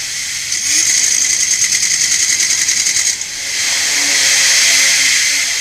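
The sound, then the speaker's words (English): The tunnel boring machine Bertha grinds its way along what will become the Highway 99 tunnel, with a shrill, high-pitched mechanical whine, first rapidly pulsing for a few seconds, then settling into a steadier, slightly lower drone. No one speaks. “as she grinds her way along what will one day become the Highway 99 tunnel”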